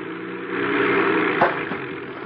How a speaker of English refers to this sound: I bring the plane down and land it on the lake.